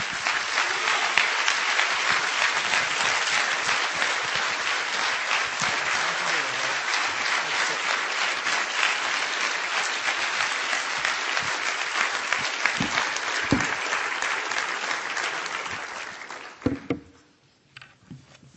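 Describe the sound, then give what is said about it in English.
Sustained audience applause for a guest speaker, a dense steady wash of many hands clapping at full volume for about sixteen seconds before tapering off into a few scattered claps and quiet. “Please join me in a warm round of applause for our guest speaker, Lieutenant Colonel Robert S.”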